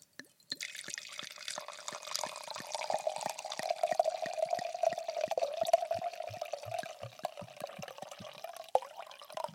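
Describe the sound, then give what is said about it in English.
Wine pours steadily into a glass for several seconds, a continuous gurgling stream broken by rapid glugs, with the pitch rising slightly as the glass fills. No one speaks. “I need to pour my wine here.”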